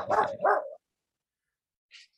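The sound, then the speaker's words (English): A dog gives two quick, loud barks, followed by a brief silence and a faint, high-pitched squeak or yip near the end. “We want, here we go, it's one of my dogs.”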